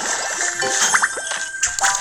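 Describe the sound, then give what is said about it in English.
A bright electronic jingle of tinkling, chiming tones from a game being played on a mobile phone rises and falls for about two seconds, fairly clear with no one talking. “just plays a game on his phone every time we do this podcast.”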